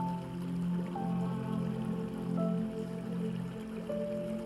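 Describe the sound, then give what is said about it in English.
A quiet river flows steadily, a continuous soft wash of water with a gentle sustained musical tone drifting underneath. No one speaks. “Focus on your Heavenly Father, on His goodness and His mercy, while you listen to the peaceful river flowing.”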